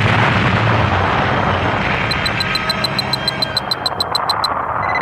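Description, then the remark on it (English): A tremendous explosion destroying the starship Enterprise roars and rumbles continuously, deep and loud throughout, while a rapid series of high, evenly spaced electronic beeps chirps over it midway. No one speaks. “And then, a tremendous explosion.”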